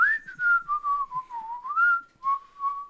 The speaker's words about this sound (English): What are you doing? Just whistling.